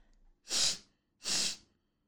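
Two short, airy sniffles, evenly spaced less than a second apart, with quiet stillness around them and no talking.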